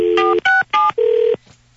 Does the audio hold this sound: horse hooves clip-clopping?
no